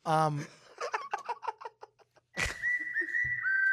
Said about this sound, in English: My first whistle of 2021 was outstanding.